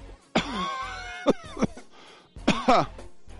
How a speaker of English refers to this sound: spit on my hand, coughing here.